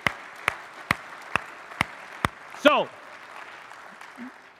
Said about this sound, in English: Come on, can we give the Lord a hand clap here today?